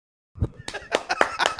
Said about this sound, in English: No, why are you clapping?